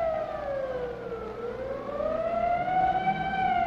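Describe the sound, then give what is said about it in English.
A civil defense siren wails continuously, its tone sliding down and then rising again in a slow, steady sweep. It is loud and sustained, with no voices. It sounds once more at 1:32 in Portland, as directed by the mayor, telling people to take cover. “And at 1:32, as directed by the mayor, the siren sounds once more. Take cover.”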